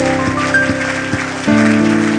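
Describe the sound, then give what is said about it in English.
A church audience of young people claps for the Lord at an evening service, in a steady, even beat, loud and rhythmic, over sustained organ-like music that shifts to a new chord near the end. “Let's give the Lord a good hand clap this evening.”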